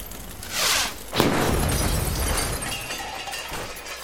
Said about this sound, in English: What the hell was that? I think it came from the abandoned arcade. An explosion can only mean one thing.